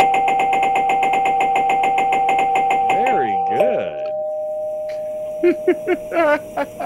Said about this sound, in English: Congratulations. Hit the buzzer.